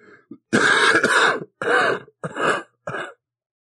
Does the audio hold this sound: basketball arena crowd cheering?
no